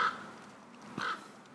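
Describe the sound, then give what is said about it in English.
A crow caws twice, about a second apart, each call a short harsh squawk, over a quiet background with no one talking. “That crow is driving me crazy.”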